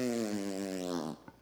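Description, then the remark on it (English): A voice blows a loud, buzzy raspberry, imitating a fart, for about a second before it sputters out, followed by a brief quiet click. “Sometimes I make fart noises in conversation”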